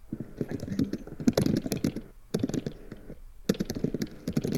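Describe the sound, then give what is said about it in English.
Rapid computer keyboard typing, fairly crisp, comes in dense bursts of clicking keystrokes separated by a couple of brief pauses, with no talking over it. “you can hear all those keyboard noises.”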